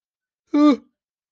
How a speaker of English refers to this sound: I apologize. I have not yawned at all this entire day. And then up to now, I started yawning while I was, I don't know, maybe it's, I need to put some not so comforting lighting on.